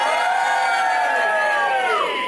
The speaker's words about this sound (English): So I'm here at the Cavendish Arms in Stockwell, in London. Can I have a cheer from the audience?